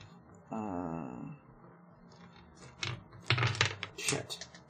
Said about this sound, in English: You know, it's been a while since I've gotten the chance to roll a die, so, let me just see search through my dice pouch and find a D10.